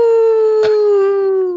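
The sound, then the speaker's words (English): A person imitates a wolf howl: one loud, sustained note that holds steady and drifts slightly lower in pitch over about a second and a half, with no talking. “…, can you give us a wolf howl, please?”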